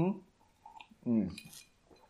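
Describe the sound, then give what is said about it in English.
A quiet sip from a glass, with a light clink of glassware and a soft slurping breath, mixed with brief murmured vocal sounds. “I'm going to have a sip now.”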